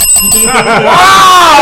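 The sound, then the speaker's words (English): A loud, bright bell rings, its metallic tone ringing out and sustaining steadily to the end, with some muffled voices or commotion underneath at first. “Ring that bell.”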